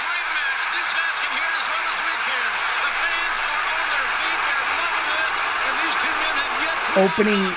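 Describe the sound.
A loud, dense roar of a wrestling crowd, a continuous wash of cheering and shouting voices that stays intense throughout, with a brief voice rising above it near the end.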